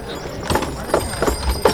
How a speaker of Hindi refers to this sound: अरे ये का है? तो बैलगाड़ी है, ये बैलगाड़ी यहाँ कहाँ है आया है?